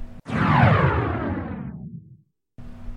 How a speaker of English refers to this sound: And whoosh.